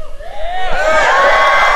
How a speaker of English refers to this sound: No, no, no, no. Y'all cheer louder